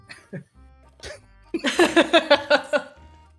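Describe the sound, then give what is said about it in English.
A short, polite cough into a hand, then a quick run of about eight rhythmic, voiced cough-like bursts, moderately loud, with no talking around them. “Leon coughs politely into his hand.”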